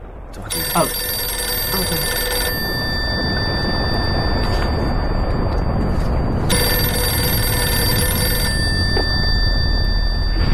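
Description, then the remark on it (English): A telephone rings in two long, bright bursts separated by a few seconds of pause, fairly loud over a constant rumbling background noise. “I know, I'll phone him.”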